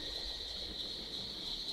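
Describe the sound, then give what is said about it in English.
A steady, unbroken chorus of crickets chirping, fairly quiet, with a faint low rumble of outdoor ambience underneath and no voices. “Let's kill the crickets.”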